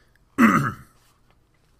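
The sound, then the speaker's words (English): A single gruff throat clearing, fairly loud, a short rasping burst lasting about half a second before quiet returns. “Let me clear my throat.”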